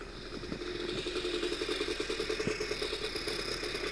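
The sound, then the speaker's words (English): A snowmobile engine runs hard in a snowmobile race, its steady mechanical drone carrying a rapid, rhythmic pulsing clatter throughout, with no voices. “Kim Jong-un at the Olympics, and I'm in the snowmobile race. Here I go. Oh, zoom it up.”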